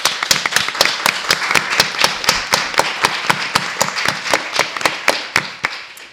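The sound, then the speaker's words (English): An audience applauds steadily for about six seconds, with one sharp clapper keeping a quick, even rhythm over the dense wash of hands, then tapering off at the end. “And let us give a round of applause to”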